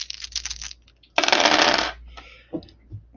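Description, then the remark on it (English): Dice rattle briefly, then a handful spills and clatters loudly across a hard tabletop, settling with a few faint scattered clicks afterward. No voices. “Actually, I think for this one, it's going to be wits and survival plus aspects. Survival seems to make more sense here. That is less dice.”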